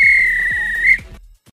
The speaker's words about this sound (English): If this were a real bit of extra time, this is when the referee blow the whistle because it's finished.